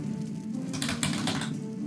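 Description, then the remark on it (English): A die clatters down through a dice tower during a tabletop role-playing game, landing on 19, in a quick burst of rattling clicks and taps, moderately loud, with no one talking over it. “It's a 19 on the die. That will hit. Man, Eric, nice dice tower.”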